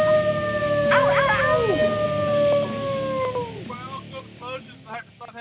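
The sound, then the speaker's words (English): A person lets out a long, loud wolf-like howl, holding a wavering note for about three seconds before it slides down and fades, followed by brief talking. “How can you disparage that howl?”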